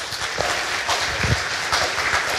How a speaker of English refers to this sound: So have y'all clap for these dudes.